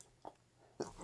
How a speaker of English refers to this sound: Sneeze. Bless you.